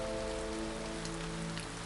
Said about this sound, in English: When they reached the gate of Guniu Mansion, the wind and rain gradually stopped.